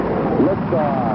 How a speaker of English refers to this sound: Liftoff. We have a liftoff.